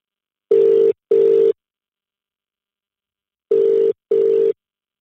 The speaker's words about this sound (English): Let's see if he picks up the phone. If he doesn't, it's a you and me chat, all right?